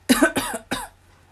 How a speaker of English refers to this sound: The coughing was when he got it right, yeah?